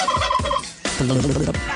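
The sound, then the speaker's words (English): A voice does an impression of a cockatoo, gobbling like a turkey in two rapid, warbling bursts, the second lower and throatier, loud with no other talk. “doing an impression of a cocky's tongue. It's got a touch of the Paul Hogan's neck about it. It sure does. Real gobbler.”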